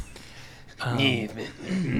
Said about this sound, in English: Clear my throat.